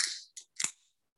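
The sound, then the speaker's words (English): A beer can cracks open: a sharp metallic pop and tab click joined by bright, hissing fizz of escaping carbonation, all in about a second with no voices. “We're going to crack this open.”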